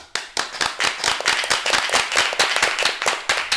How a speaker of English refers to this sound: Yes, the clapping shows the strength and interest of our students. You all deserve praise and hope your encouragement will continue throughout this show.